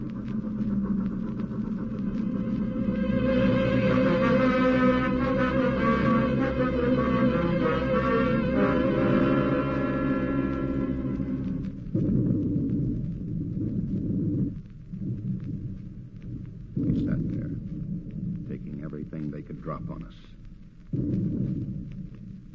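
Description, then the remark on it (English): A long, heavy rumbling roar gives way to a series of deep, muffled booms arriving in uneven bursts: depth charges from a destroyer exploding underwater. No voices are heard. “Rigged for depth charges.”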